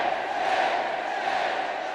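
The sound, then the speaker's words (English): A large crowd roars steadily in unison, chanting "snake, snake", a dense wall of massed voices, loud and sustained throughout with no pauses or individual voices standing out. “As the crowd chants, snake, snake.”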